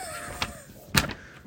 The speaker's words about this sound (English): All right, if you want to hear this, it's me cutting paper.